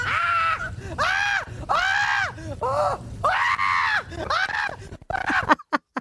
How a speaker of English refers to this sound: It was full on. It was absolutely full on roller coaster, but I loved it. I screamed my whole way around it and then loved it.